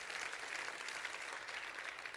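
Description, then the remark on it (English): An audience claps hands together in a dense, steady burst of applause, many overlapping claps blending into a loud, continuous crackle with no talking. “Come on, clap your hands real big and say, I love the grace of Almighty God.”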